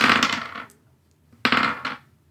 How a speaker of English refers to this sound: I am going to roll 5 dice.